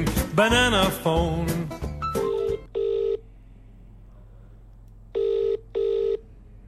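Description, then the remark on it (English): A rapid, busy burst of telephone dialing tones as a cold call is placed, then a phone line ringing in two double-pulse rings separated by a pause, clear, with no voices. “But we're going to move on now to our NI cold call and we'll see how successful we are.”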